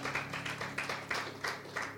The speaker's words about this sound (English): Si le va a dar esas palmas, désela bien fuerte al Señor. Give a round of applause, give it to God.